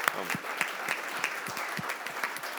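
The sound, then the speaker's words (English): A short burst of steady audience applause for a couple married 40 years, many hands clapping in a dense, fairly loud patter with a few sharper claps standing out, lasting a few seconds without talk. “I feel like that just deserves a round of applause.”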